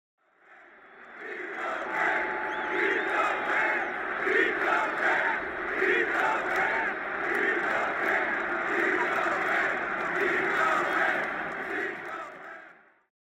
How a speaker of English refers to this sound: The then-called Edward Jones Dome rang out with 50,000 fans making one last effort to keep the Rams in St. Louis.